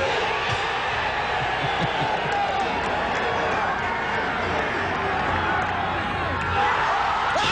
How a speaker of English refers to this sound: Tiger Woods hole-in-one at the party hole in Phoenix. He hit 16, listen to the crowd. Tiger's got 152 yards. Should be just a nice, comfortable 9-iron for him. They're going to go nuts when he hits this thing.